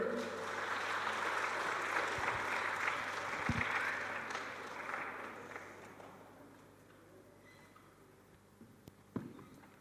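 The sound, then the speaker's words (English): A crowd applauds warmly, a dense patter of many hands clapping at once that holds steady, then gradually thins and fades out toward the end. “So, a big round of applause”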